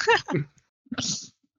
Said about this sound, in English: And then I sneeze very loudly. And when I sneeze, like, my whole body jumps, flutters up into about like a foot up into the air and then down again.